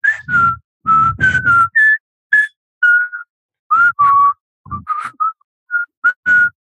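A person whistles a march tune, a bright, clear melody in short clipped notes and brief held tones, phrased in quick bursts with short pauses between them. No one speaks.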